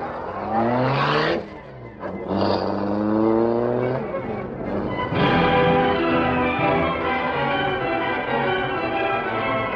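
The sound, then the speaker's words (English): The engine of the Black Beauty car roars to life and revs hard, climbing in pitch through several quick gear changes as the car accelerates away, loud throughout. “All right, start the Black Beauty.”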